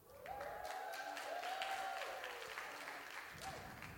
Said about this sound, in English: If you're going to clap for me, clap for me well.